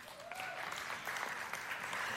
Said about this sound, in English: And would you clap if you've ever done karaoke?